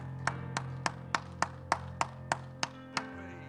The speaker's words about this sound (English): Clap your hands if you love the Lord and love His Word. Hallelujah.